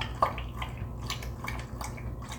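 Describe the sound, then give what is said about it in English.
A Shetland sheepdog named Hops laps water from his water bowl in a steady, rhythmic, waltz-like series of wet splashy slurps, fairly quiet, with no voices. “And one of my absolute favorite sounds is him drinking water out of his water bowl.”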